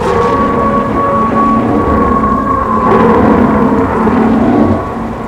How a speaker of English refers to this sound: That noise, that howl, it sounded like the last thing you hear before you're taken. It was as if the end of everything was right behind me.